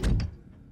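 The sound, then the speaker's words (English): A door shuts with a solid, heavy thunk and a brief rattle, followed by a short low decay into quiet. Single impact, no voices. “And close the door behind you.”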